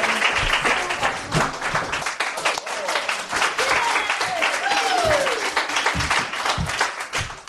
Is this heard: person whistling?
no